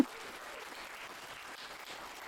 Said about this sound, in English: She's an author, a great orator, and all-around badass, so please give her a round of applause too.